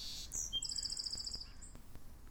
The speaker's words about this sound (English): Oh, that's really neat. We could totally see its call. Yeah, you saw it singing. That's a song sparrow.